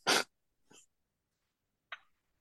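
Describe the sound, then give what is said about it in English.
A sudden, loud sneeze bursts out at the start, followed by a softer breathy exhale and, after a pause, a brief sniff-like sound. No one speaks. “Because I sneeze right now.”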